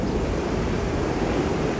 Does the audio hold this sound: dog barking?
no